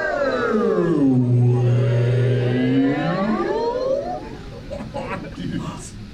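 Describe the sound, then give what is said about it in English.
A crowd of people imitating a whale lets out a long, low, wavering moan that dips and rises like a whale call, lasting several seconds before trailing off into scattered crowd noise. “Hey, did you guys hear that whale? There, those are human dudes.”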